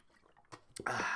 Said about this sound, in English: I'm going to drink water here. I've been talking a lot.